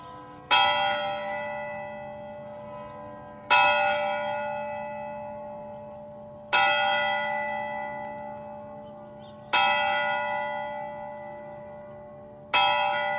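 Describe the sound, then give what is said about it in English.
A single church bell, the curfew bell of a Tudor town, tolls slowly and steadily at 8 p.m., five strikes about three seconds apart, each ringing out with a bright metallic clang and a long fading hum. No voices are heard. “By 8 p.m., the curfew bell is ringing, signaling an end to the day's activities and the time to secure your home for the night.”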